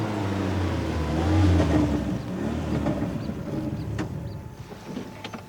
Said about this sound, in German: Hinter Roberto, an der Uferstraße, hielt ein Wagen mit quietschenden Reifen.